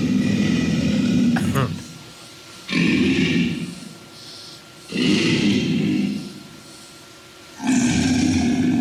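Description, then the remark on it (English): An alligator growls in deep, rumbling, very low-frequency bellows, four long loud bursts separated by short pauses, heavy with low-end vibration. “This alligator, low frequency, really low.”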